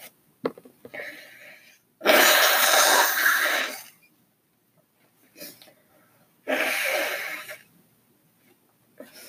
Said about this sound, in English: Sorry. I see Kleenex. I don't have COVID. I just have to blow my nose.